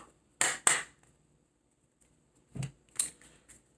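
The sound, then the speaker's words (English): A deck of cards being shuffled for a card reading: two quick pairs of crisp, papery riffles and snaps separated by a short pause, with no one talking. “I want to do another shuffle again.”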